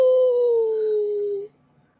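A single loud, drawn-out howl holds a steady tone and sinks slightly in pitch for about a second and a half, then cuts off into near silence. No one speaks.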